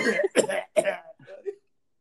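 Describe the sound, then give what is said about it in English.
A rapid series of deliberate, forced coughs, about three or four harsh bursts, followed by a softer throaty tail, with no talking. “I'm not gonna throw punches. I'm gonna throw coughs at you.”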